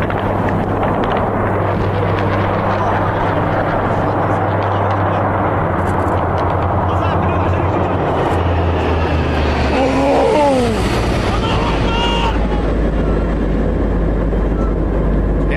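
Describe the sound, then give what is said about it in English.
A loud, steady roar of aircraft engine noise fills the scene, then a falling, whining pitch sweeps downward partway through, like a plane going into a dive. “Snack bar didn't keep it in the air at all.”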